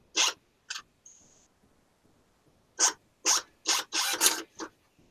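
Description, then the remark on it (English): A receipt printer prints a picture displayed in ASCII in short, rasping mechanical bursts: two quick buzzes and a brief high whine, a pause, then a fast run of five or six buzzes, with no talking. “You can print it from a receipt printer.”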